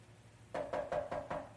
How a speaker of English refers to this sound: But how about the next day, the man goes out visiting with his church and he knocks on the door and it's that policeman's door.